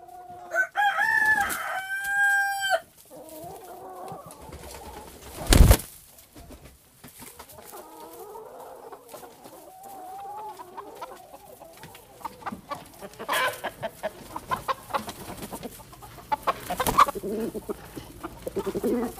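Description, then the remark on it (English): Several chickens cluck and murmur in a steady, overlapping chatter, opening with a loud drawn-out call and a brief sharp flutter partway through, with no one speaking. “As usual, she sat on the wooden bench in the company of the chickens while she wrote down her thoughts in her notebook.”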